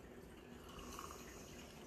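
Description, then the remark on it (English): Wine pours steadily into a plastic cup, a soft continuous trickling and splashing sound for a couple of seconds, with no talking. “You poured so much.”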